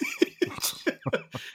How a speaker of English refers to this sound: And you're coughing.